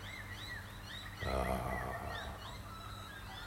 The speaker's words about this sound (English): I'm thankful for the bird song. Listen to that.